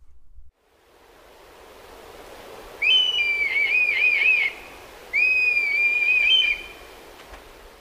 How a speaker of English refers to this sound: The red kite sounds almost like a flying cat, emitting a slightly haunting meow call, which becomes very loud when a low-flying group is calling together.